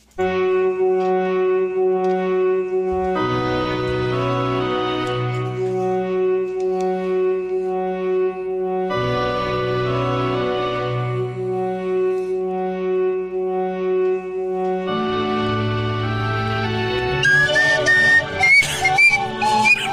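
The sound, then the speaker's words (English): A bright, tuneful theme song for a game called Live Free or Die Hard plays on its own in repeating phrases over a steady low bass, ending with a slide whistle that sweeps upward in pitch several times. “I got a theme song for it.”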